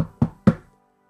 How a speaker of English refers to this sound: But as you're inside your room, you hear the door, someone knock on it.